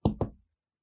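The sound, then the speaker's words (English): Two quick knocks on a door, fairly loud, with a short gap between them, followed by silence. “So you're sitting there looking over these papers and you hear a little knock knock on your door.”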